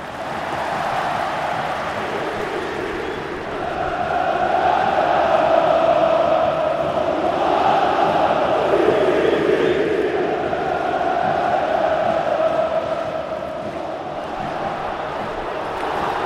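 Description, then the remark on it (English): A football stadium crowd roars after a goal from a free kick, in a dense, steady wash of noise that swells louder after a few seconds and holds there, loud and continuous, with no clear individual voices. “Now it's properly perked up, as you can hear.”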